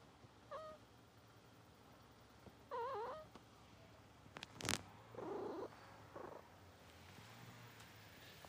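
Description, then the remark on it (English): A cat stretched out beside a person purrs softly and steadily while being petted, broken by a few short chirping meows and a brief sharp rustle or thump partway through. No one speaks. “my cat is interjecting”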